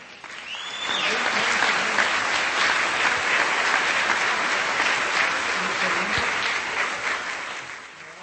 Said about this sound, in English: Let's have a big round of applause for our two superstars